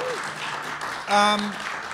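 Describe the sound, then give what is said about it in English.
An audience claps steadily in a dense, even patter for two seconds at the opening of the Burning Platforms event, with a brief, louder tonal burst rising over the applause just past the midpoint. “So guys, clap.”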